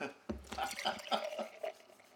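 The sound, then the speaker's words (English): A drink is poured, with a run of quick gurgling glugs and splashes over about two seconds, moderately quiet and uneven in rhythm. “We're going to pour this bitch in.”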